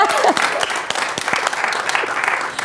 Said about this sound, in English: Give him another hand. Only one person. Clap, everybody.